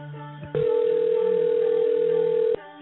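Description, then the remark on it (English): A telephone call to a friend ringing out over a phone line: one steady, unbroken ringback tone lasting about two seconds, fairly loud and clear, with only faint line hum before and after. “Let's call him and bring him on. Hopefully he answers his phone.”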